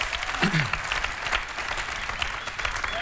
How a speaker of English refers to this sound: Let's give the Lord a huge round of applause.